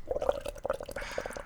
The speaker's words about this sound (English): I'm gonna give him the bong hit. Hold up.